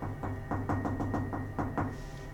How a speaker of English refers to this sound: When he gets to the room 616, I'm just going to knock on the door.